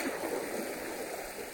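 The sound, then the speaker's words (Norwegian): A steady, soft wash of water as the sea slowly rises and falls on a calm day at a sandy shore, like waves lapping gently and continuously, with no distinct breaks and no voices. “Jeg står og ser på havet som dreier seg sakte opp og ned, og hvis jeg lager en tegning I sanden, så vil havet komme og stryke den ut, sånn at det går an å starte helt på nytt, hvis det ikke var bra nok.”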